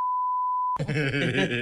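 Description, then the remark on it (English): A steady, pure censor bleep holds for under a second, then cuts off abruptly as a loud, strained vocal sound like a groan takes over. “That's definitely going to have to get beeped.”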